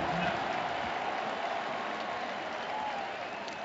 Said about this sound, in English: Texas working on the Sooners end of the Cotton Bowl. OU fans, 45,000 plus roaring.